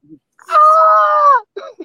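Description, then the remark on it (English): A person imitates a stunned woman's scream: a quick gasping intake of breath, then a loud, sustained strained cry lasting about a second, followed by a couple of short breathy vocal sounds. “That stunned white woman scream where they're gasping for air first.”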